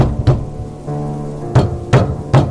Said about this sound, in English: Bruce pushed his way through the driving snow up an icy ridge until he finally reached an ancient monastery perched atop a rocky outcropping. He staggered to the vast doors and pounded on them with all of his remaining strength.